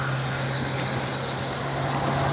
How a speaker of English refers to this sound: It's the same roadies, there we go, same bunch, backwards and forwards. How strange. Same muscle cars now coming past.